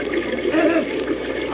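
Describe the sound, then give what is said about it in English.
A steady, loud rush of turbulent water surges against a gate, a continuous churning roar with no pauses, heard on its own without any talking. “The rush of water against the gate is too strong.”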